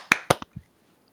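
A quick series of hand claps for audio sync after a 3, 2, 1 countdown: two sharp, bright claps in close succession, then two softer, duller ones, followed by near silence. No one speaks.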